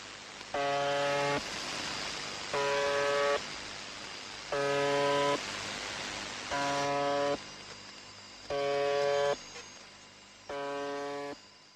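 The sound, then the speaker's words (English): A number station's harsh, droning buzzer tone sounds six times in a steady rhythm, each blast lasting just under a second with short gaps between, over a constant background hiss of noise. “So, So you've heard the buzzer.”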